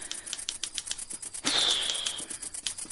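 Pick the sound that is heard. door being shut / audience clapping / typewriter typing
typewriter typing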